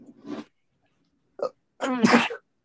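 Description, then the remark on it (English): A loud sneeze bursts out near the end, preceded by a couple of short breathy vocal sounds and brief silence; no speech is heard. “It's just sneezing.”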